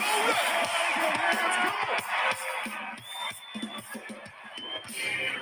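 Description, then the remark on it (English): An audience claps their hands in a steady, dense patter, with crowd noise and scattered voices and whoops mixed in throughout, loud. “Just clap your hands, clap, clap.”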